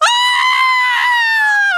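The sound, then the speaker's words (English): A single shrill human scream, loud, holding one high piercing pitch for almost two seconds before cutting off abruptly, with no other sounds around it, as a body is discovered on the premises after a party. “For a time, a silent calm settles over the premises, before shattering as a shrill scream rings out.”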